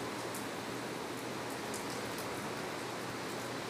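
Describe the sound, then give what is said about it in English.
Water dripping off a roof: scattered, irregular drips tick over a steady, hissing wash of water and a low hum, with no one speaking. “You'll hear a few cars passing by, but a little bit of wind, but mostly just the water dripping off the roof and the distant waves from the shore across the street.”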